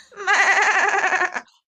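A single drawn-out goat bleat, loud, with a wavering, quavering tone lasting just over a second before cutting off into silence, given in response to a person calling "Hello, goat."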